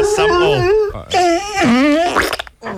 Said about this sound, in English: That song always sets off the dog.